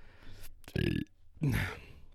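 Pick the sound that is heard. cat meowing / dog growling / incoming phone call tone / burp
burp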